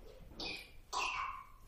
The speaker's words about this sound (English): Good stuff. Better the squeaks of the children than the snores of the saints, right? I love it. That's his version of amen.